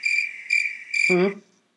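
A recording of a cricket is played back, chirping in a clear, steady, high-pitched trill that pulses three times in quick succession, before a brief low hum cuts in and the sound stops.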